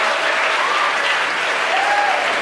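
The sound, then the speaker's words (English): A crowd at headquarters cheering and applauding as Starlink satellites are deployed during a SpaceX launch, a steady loud wash of clapping that holds without pause, with a few faint rising whoops or whistles riding on top. “The crowd here at headquarters cheering.”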